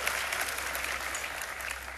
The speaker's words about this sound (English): I mean, thank you for the four of y'all who applauded. Sure, my wife was one of them down here as well.